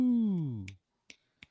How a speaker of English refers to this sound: Snap clapping. That was me. Good job by that us. Was me snap. That was me snapping with my hand that I, it's kind of hurt.